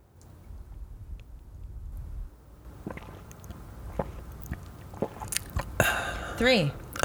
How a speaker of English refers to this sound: Do maybe a big sip. I'm going to do big a gulp. Large mouthful and then mm-hmm. see how many swallows it takes.